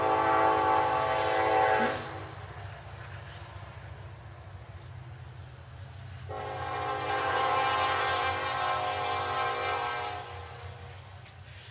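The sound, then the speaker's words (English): A train horn blasts twice with sustained harmonic tones, the first about two seconds long and the second longer, over a steady low rumble of a passing train. “All right, I guess now we know that there's more than one train.”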